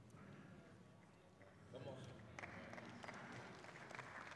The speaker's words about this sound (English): Thank you for those three claps, those 3 weak claps.